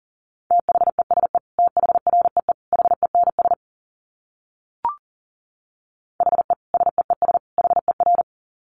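Rapid Morse code beeps in one steady, mid-pitched tone, sent at 40 words per minute: a long run of dits and dahs, a short silence broken by a single click, then another fast run.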